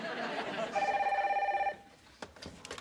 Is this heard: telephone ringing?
yes